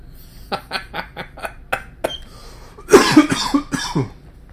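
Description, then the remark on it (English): A run of short, dry coughs in a quick rhythm from a person with a frog in the throat, then a louder, rougher burst of harsh coughing and throat clearing with a hoarse, gravelly edge. No speech. “There's that frog trying to get out again.”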